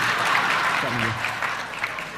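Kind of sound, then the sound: crowd, audience applause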